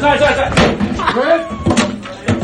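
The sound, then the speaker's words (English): Heavy crashing impacts as a man smashes an acoustic guitar into items in a store, three or four loud thuds and bangs at uneven intervals, with agitated voices shouting underneath. “This dude on the way out the door grabs an acoustic guitar and just starts smashing everything in the store.”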